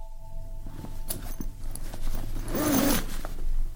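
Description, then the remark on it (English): A zipper is pulled in a few quick rasping strokes, close to the mic, the sound sweeping from one side to the other and building to a brighter, louder pull near the end. “If we get the mic close enough to the zipper, we'll be able to hear it on both sides.”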